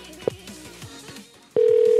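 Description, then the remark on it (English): A phone call being placed: a brief electronic beep, a quiet pause, then a loud, steady tone like a ring signal. No one speaks. “I'll call her back on my phone.”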